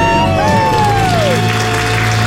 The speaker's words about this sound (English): Guys, let's hear it. A debt-free scream. Count it down. Three, two, one. We're debt-free! Woo!